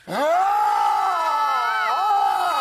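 A few people let out one loud, sustained scream together, held steady for a couple of seconds with a brief waver near the end, unbroken by any talk.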